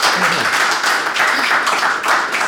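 An audience breaks into a round of applause, a dense, steady wash of many hands clapping that stays loud and even for a few seconds without fading.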